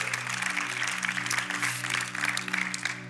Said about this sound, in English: Let's give this young dude an amazing applause.